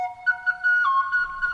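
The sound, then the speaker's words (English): A boreal chickadee (Piscelli hudsonicus) sings a short run of clear, whistled notes that waver and step slightly in pitch, with a few brief pulses over a steady tone, lasting under two seconds with no voices. “It's Piscelli hudsonicus, the boreal chickadee.”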